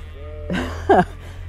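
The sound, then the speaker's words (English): Two short bleats from penned-up Jacob sheep, the second louder and more wavering, over a steady low background hum. “Oh, and if you can hear those wonderful noises, I'm heading towards the Jacob sheep.”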